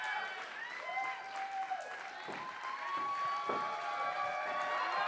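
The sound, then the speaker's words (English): A crowd applauds steadily and loudly for the whole five seconds, with dense clapping mixed with cheers, whoops and a few rising whistles on top. The audience is welcoming guests as they come out, among them AEW Women's Champion Dr. Britt Baker. “Welcome as they come out. Let's give them a round.”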